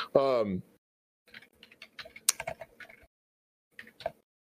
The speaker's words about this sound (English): bear with me for a second, Andy, because I'm typing a message here